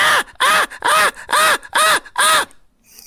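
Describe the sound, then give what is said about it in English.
A voice mimics the annoying chirping of a bird at a practice field: six loud, harsh squawks in quick, even succession, each rising and falling in pitch, insistent like an alarm. “everyone's very protective of the bird at the practice field. But it's really annoying when it starts to chirping and all that.”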